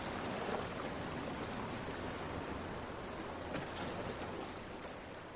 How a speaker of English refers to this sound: As we move on and start turning west to make our way around the top of Col, the wind picks up again and the water becomes choppy. Out here we are met with the unbroken force of the Atlantic Ocean, and it's brutal.